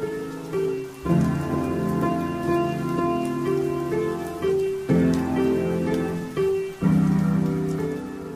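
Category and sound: nature, rain falling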